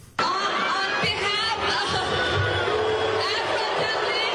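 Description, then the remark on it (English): A large crowd at a Somali Week event in Minneapolis, marking the anniversary of Somalia's independence, roars together in a loud, sustained wall of booing and jeering as a woman starts speaking; it starts abruptly and holds steady, with a dense mix of many voices and no single speaker standing out. “When she was announced, you could hear some of the boos, but when she started talking, that's when it got thunderous.”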